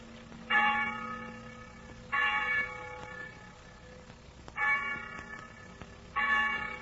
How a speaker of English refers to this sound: When the bell rang for night prayers, we went into the chapel.